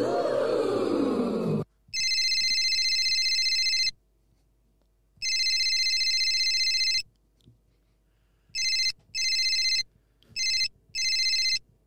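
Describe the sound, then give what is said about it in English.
A phone rings with a shrill electronic tone, two long rings followed by several quicker, choppier bursts, heard clearly with no one answering and no voices, after a brief rush of noise at the start. “Hello, fucking this fucking phone. The fucking thing won't fucking pick up if I fucking...”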